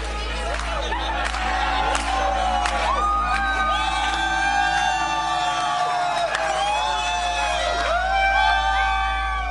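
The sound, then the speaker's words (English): A large crowd at a prayer and worship revival meeting whoops, shrieks and yells continuously, many high voices overlapping in rising and falling cries, loud, with a steady low rumble underneath throughout. “It featured laughing fits and shaking and screaming and crying and extra long prayer and worship meetings with all these claims of supernatural healings.”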